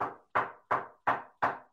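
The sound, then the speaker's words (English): Five sharp knocks on wood in a steady, quick rhythm, each a crisp hollow rap with a short decay, clear, no voices. “I'm knocking on wood.”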